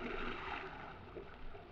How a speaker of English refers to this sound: 5 minutes went by, and then we heard the sound of muffled oars. From out of the blackness, riding out to us on the swells, came three boats.